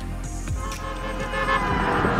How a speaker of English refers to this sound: Yeah, the horns are still honking by passing drivers here at the Ford Michigan Assembly Plant in Wayne on Michigan Avenue, just east of 275.